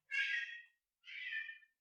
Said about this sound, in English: Do you hear that? Mm-hmm. It's feeding time, that's why. Meow.